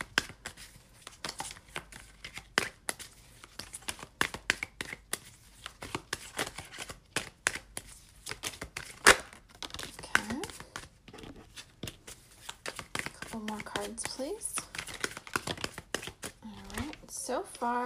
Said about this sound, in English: I am using the Radiant Wise Spirit Tarot today, and then I'm going to pull some of these tea leaf fortune cards to see what other messages we can get. And that's a good shuffle.